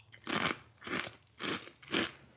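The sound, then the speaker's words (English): Four loud, crisp crunches in an even rhythm, like someone biting and chewing sweet, powder-coated flavored potato chips while taste-testing them, with no talking. “I'm getting sweet. I'm getting crunch. And I'm getting potato.”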